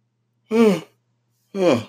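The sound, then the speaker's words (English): A breathy yawn comes out in two voiced bursts about a second apart, each sliding downward in pitch, with silence around them and no talking. “I don't know why I had to yawn, but anyways.”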